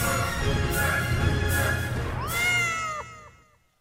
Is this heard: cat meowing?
yes